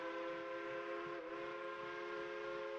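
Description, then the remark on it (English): A loud train whistle blows in one long, unbroken tone over a low rumble of rolling rail cars, with no one talking. “So, of course, you guys know, you hear the whistle. It's the Reverse Underground Railroad.”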